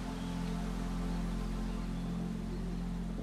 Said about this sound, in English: This is a soft breeze rustling in the trees.